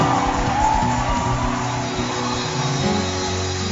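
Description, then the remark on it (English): A church audience gives the Lord a shout and a high clap offering during a worship service, shouting and cheering loudly all at once, with clapping mixed into a dense, sustained roar of many voices that holds steady for several seconds. “My God, give the Lord a shout. And a high clap offering.”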